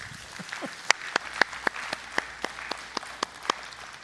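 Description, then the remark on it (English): Thin, scattered applause from a church audience: a dozen or so distinct, sharp claps at an uneven pace over a soft background hiss, polite and sparse rather than a full ovation. “Let's clap that baby up, right?”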